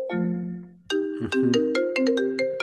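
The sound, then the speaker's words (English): A computer plays a bright, melodic ringtone like a phone call: a sustained chime, a brief pause, then a quick run of plucked tones. It rings loud, with no talking. “Whose phone is ringing? It is mine, bro. My phone. Can you dial it in, bro? Sorry. It wasn't my phone. It was my computer.”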